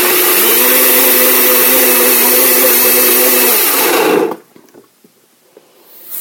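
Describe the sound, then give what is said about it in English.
A BlendTec blender pulses greens in one loud, roaring burst of about four seconds with a steady droning whine, then cuts off abruptly, leaving near silence and a few faint clicks. “So now I'm just going to put the top on, and I love this BlendTec, and then I'm just going to pulse. And pulse it.”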